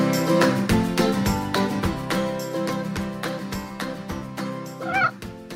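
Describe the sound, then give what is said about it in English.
A single short meow from Constantine, a pet cat, rises near the end, heard over steady, rhythmic background music that plays throughout. “Can you hear Constantine meowing?”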